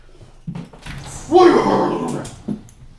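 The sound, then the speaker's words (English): A puppy whimpers and lets out a few high yips in a short burst, with brief voice sounds around it. “Hi, puppy dog.”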